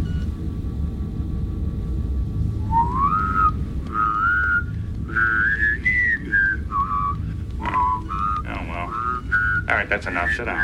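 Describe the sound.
The character Data whistles a short, wandering tune on command in clear notes that rise and fall, carried over a steady low rumble in the background.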